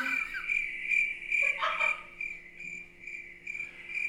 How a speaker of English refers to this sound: Wait, where's my crickets?